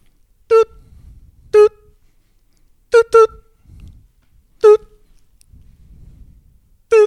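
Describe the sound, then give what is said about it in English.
A voice imitates a store barcode scanner with six short, steady, mid-pitched beeps at uneven intervals, two of them in quick succession, with faint low rustling between. “You could do a good beep. You know the scanner at the store?”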